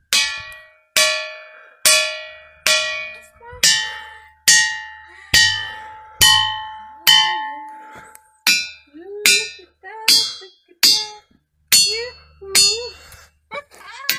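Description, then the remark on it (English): A steady series of about fourteen sharp strikes on ringing rocks, roughly one per second, each giving a bright bell-like tone that decays quickly. A faint voice murmurs underneath in the later strikes. “There's a lot of rocks here, and so many of them make tones.”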